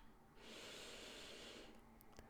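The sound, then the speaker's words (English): A single deep, steady breath drawn in through the nose during a guided breathing exercise, fairly loud, an airy rushing sound lasting just over a second before trailing off into quiet. “Breathing in”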